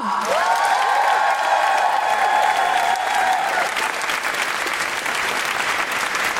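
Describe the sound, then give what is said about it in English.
A crowd applauds comedian Paul Sinha with dense, continuous clapping, and loud whoops and cheers rise over it for the first few seconds before the clapping carries on alone. “Warm, guilty feminist Amnesty International applause going for the fantastic Paul Sinha!”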